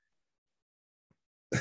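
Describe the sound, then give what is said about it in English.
A sudden, loud cough bursts out after near silence, a single harsh blast that is cut off abruptly. “Bro, that cough was serious, you know, bro.”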